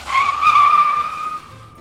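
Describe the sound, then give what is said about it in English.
A loud, sustained tyre screech from a BMW car skidding on a mountain road in Italy, lasting under two seconds, a high whining squeal that holds steady then fades slightly, with a low engine rumble beneath it and no voices. “So anyway, the tyre skidded.”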